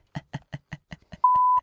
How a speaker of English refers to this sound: You can't do these unless you actually bleep the other. Like, I'm going to bleep these all. I am bleeping all of these.